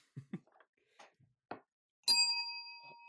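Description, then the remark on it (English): A microwave alarm for burritos sounds as one bright, bell-like ding that rings on and slowly fades over about a second, after a few brief, quiet bits of voice and movement. “Oh, there's the microwave alarm.”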